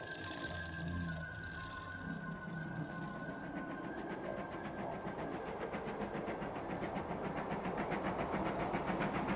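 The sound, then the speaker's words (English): A passenger train rolls through the English countryside at steady speed, a loud continuous rumble with rhythmic clacking of wheels over the rails and a brief sustained whistle tone near the start. No one speaks. “The shifting English countryside flutters by a small observation porch at the end of one of Her Majesty's trains.”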